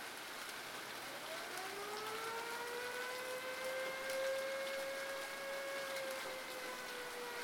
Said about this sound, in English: Sirens howl, just like the people.